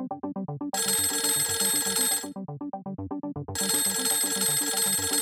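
A telephone rings loudly with a call from London, in two long, rattling bursts separated by a short pause, with a repeating electronic chime pattern running underneath throughout. No one speaks.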